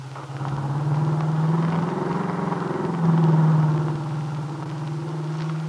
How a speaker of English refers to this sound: Now, with Del at the wheel of her car, the nightclub owner and the young entertainer turn onto the main highway which leads to Chicago.